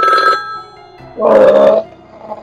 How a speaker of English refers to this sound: Oh, phone ring? Yeah, I can't find my phone ring.